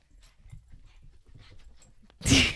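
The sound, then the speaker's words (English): A dog with the zoomies, carrying a loud toy, pants in quick, breathy bursts, steady and excited, until a sudden loud, shrill squeak-like burst cuts in at the very end. “He's got the zoomies.”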